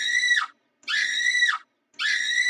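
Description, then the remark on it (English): A voice imitates panicked screaming in three loud, shrill bursts, each dropping in pitch at the end, with brief silences between them and no other talk. “Because if you're not mindful, you will go and have yourself acting crazy, screaming at the top of your lungs.”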